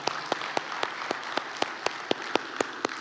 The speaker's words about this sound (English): Come on, let's clap for joy.